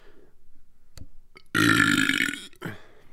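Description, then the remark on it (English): A loud, drawn-out burp rumbles for about a second, followed by a shorter second belch, with a couple of small clicks and breaths beforehand. “I simply suggested, hey, sorry, I'm fucking burping like crazy.”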